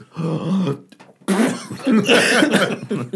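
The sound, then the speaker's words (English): A person mimics someone sneezing in a dead-quiet scene: a voiced, drawn-out buildup, a short pause, then a loud, breathy, hissing burst that trails off over a couple of seconds. “Yeah, sneezing, you can never look cool.”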